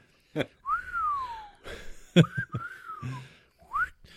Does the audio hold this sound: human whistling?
yes